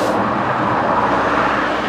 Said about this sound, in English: Do you hear the plane? Where is it? It's a very clear day. It's a very clear day.